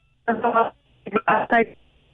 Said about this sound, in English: Right. That's a dreadful phone line. Let's see if we can't get you back in a slightly better one.